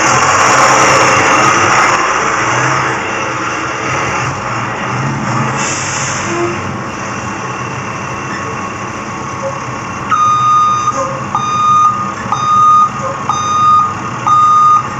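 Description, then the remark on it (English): A large bus engine rumbles steadily at idle, then after a while a loud reversing alarm starts beeping in a regular, repeating rhythm over the engine noise. “I mean, I will not bring out the bus for my interpretation of National Bosses Day.”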